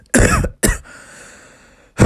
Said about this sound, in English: I do apologize, I have a bit of a cough.